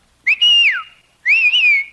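Two sharp, loud whistle blasts, the kind used to hail a taxi; the first holds then swoops downward, the second wavers briefly before ending, with no talking.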